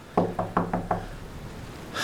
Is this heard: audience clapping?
no